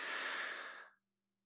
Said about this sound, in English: My breathing, it's normalizing pretty quickly. Temperature is regulating. There's no fan going on in the background.